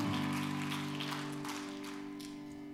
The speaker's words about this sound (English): Give the Lord a good hand clap of praise as you're being seated today.